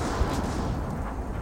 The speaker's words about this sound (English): the sound of bombs, the sound of gunfire. It was the most surreal sound you will ever, ever hear. Very, very chaotic.